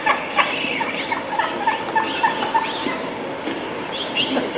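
A wild turkey makes rapid, agitated clucks and short gobbling bursts at close range, repeated throughout against a steady outdoor hiss, with no one talking.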